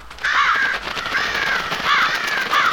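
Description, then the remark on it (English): Several harsh crow caws ring out in a ragged series as the crows fly off, loud, each call a hoarse, slightly wavering squawk with brief gaps between them. “The crows offer some mocking caws as they fly off.”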